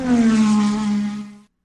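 A NASCAR race car engine screams past on a track, a loud, buzzing high-revving whine that drifts slightly lower in pitch before cutting off after about a second and a half.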